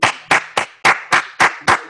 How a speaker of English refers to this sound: I don't worry about it. I give my own self my claps. You ain't got to worry about it.